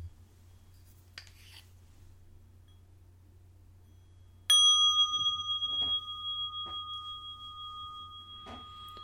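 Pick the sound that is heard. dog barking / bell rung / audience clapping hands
bell rung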